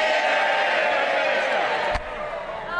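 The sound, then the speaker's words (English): A loud, steady din of many voices, then one sharp, flat slap as a folder is smacked down onto a dispatch box, after which the crowd noise dips slightly. “She really slapped her folder down on the dispatch box there.”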